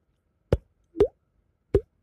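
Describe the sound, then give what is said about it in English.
A voice imitates the sage grouse's water-drop mating call, which the birds make with their air sacs to attract mates, heard over the plains early in the morning: three hollow, liquid plops, spaced a little unevenly and clearly audible against silence, each one short with a quick bubbly pitch bend. “they make a water drop noise. They just go, you hear over the plains, you know, early in the morning here.”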